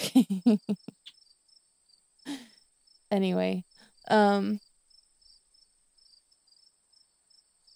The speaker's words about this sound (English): I think my birds do that because they can hear it through my headset. When they get loud and it goes to the microphone